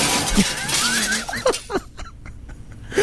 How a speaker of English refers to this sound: There's 6 minutes of breaking glass. 6 minutes. Ouch! Who needs 6 minutes of breaking glass? That's absurd. Maybe some people, it's their white noise, you know, like they need that to go to sleep.